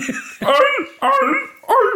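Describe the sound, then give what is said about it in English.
A person imitates a sea lion with three loud, throaty barks in a steady rhythm, each a short harsh honk that drops in pitch, separated by brief pauses. “And then she leaves and he calls somebody to make him bark like a sea lion.”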